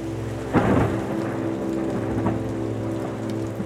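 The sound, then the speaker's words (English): Steady heavy rain hisses throughout, broken by a sudden loud thunder crack near the start and a lower rumble that rolls on beneath the downpour. No voices. “Then the sky turned dark and unleashed her cold fury.”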